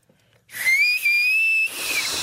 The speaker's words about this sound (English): You push the taco down below your tooth line. Uh-huh. And then where the whistle is coming from is the air that's between your pushed down tongue and your fingers.